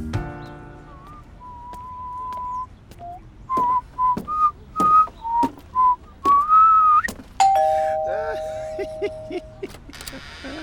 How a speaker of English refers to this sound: Did you hear the doorbell? Yes, that's why I opened the door.